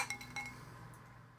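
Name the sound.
glasses clinking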